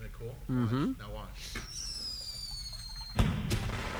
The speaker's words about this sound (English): Oh, I see. So the sound. Yeah, it looks like fireworks. Yeah, the sound is fireworks, and then the flowers open up to the sound.